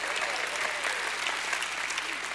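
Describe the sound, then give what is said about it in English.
An audience claps steadily in praise during a church sermon, a dense wash of many hands clapping at once, loud and continuous with no voices standing out. “Give him a hand hand clap and a shout of praise.”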